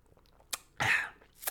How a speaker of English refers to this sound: pardon me, folks, for one moment, quick sip of water break